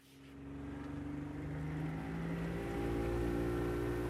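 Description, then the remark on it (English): A boat's motor drones steadily with a low, humming pitch, building slightly in loudness as the boat heads out into the bay carrying a 90-pound turtle, with no voices. “The boat heads out into the bay.”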